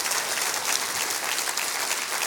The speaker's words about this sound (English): Come on, clap your hands real big, real big.